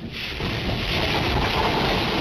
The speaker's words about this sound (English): 30-foot waves hitting California's shoreline, including a rogue wave in Ventura County that sent 8 people to the hospital.